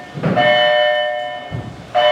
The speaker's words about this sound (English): You know what that bell means. It's time to get back to work.